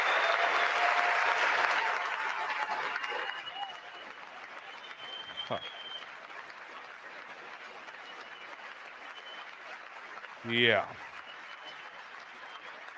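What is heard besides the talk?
applause in congressional chamber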